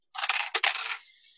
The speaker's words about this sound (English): So roll me those 3 damage dice and make sure that they aren't 1 or 2.